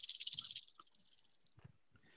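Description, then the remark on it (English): Dice rattle and clatter briskly across a hard table for about half a second, followed by a few scattered clicks and knocks as they settle, with no voices. “Oh, some good dice.”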